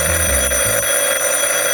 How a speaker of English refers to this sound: If you recall our last episode, Ned and Mahoney were giving a rubdown to Police Chief Harrington when the phone rang kinda sudden-like.